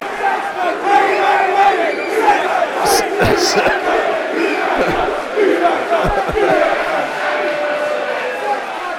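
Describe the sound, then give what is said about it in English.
A football crowd at a match against Reading chants loudly and steadily, a dense mass of voices sustained for the whole stretch, with a few sharp claps or shouts punching through the din. The middle section of the crowd is taunting a fan wearing the full kit. “The middle crowd have spotted the full kit wanker over there.”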